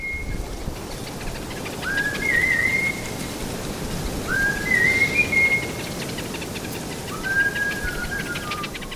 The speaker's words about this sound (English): mentioned that the people have a special whistle that they use to attract the bird. Does everyone use the same whistle? The Hadza use a characteristic whistle that has melodies and phrases that is a locally consistent set of a repertoire of whistles.